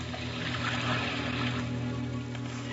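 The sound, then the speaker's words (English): Waves wash and lash steadily against a lake shore, a continuous churning rush of water with a low droning rumble beneath it and no voices. “So I went down to the lake, where the lashing waves kept time to my thoughts.”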